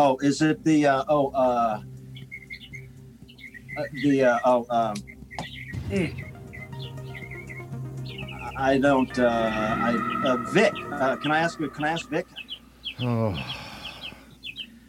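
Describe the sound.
Birds belonging to one of the people talking chirp in short, high bursts throughout, scattered, underneath people talking in the foreground.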